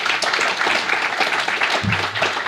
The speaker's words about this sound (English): So give another round of applause.